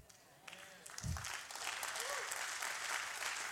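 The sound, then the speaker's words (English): An audience breaks into applause during a sermon after a quiet moment, the clapping swelling quickly into a steady, moderate patter of many hands, with a few voices calling out underneath. “We can't clap real hard over a message like this, I know.”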